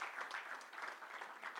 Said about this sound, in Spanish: Dele un aplauso al Señor entonces.